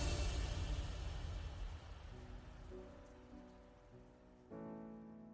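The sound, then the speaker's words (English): Steady rainfall hisses, heaviest at the start and then easing slightly, while soft sustained musical tones rise underneath partway through and swell near the end. “But if you make a decision to freeze for a moment to feel the rain, experience it, and think of all the possible associations with it, you're conscious.”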